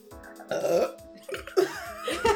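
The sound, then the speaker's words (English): A long, drawn-out burp rumbles with a croaky, rasping texture, swelling in bursts over a couple of seconds before trailing off. “Can you like edit in that burp into one of the bullies?”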